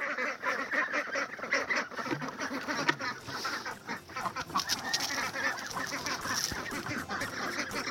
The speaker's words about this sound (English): It's 7 o'clock in the morning and time to let the ducks out. Give them some fresh water, get them their feed. Morning, ducks. How's everyone doing today? You guys are hungry.